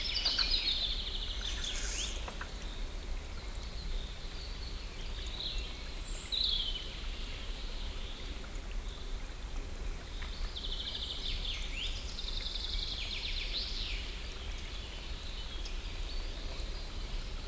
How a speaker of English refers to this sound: Riverbank. Day.